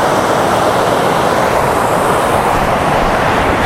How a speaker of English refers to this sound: I mean, I'm standing in a gorge, looking at one of the biggest waterfalls I've ever seen. Nobody here. Literally nobody here.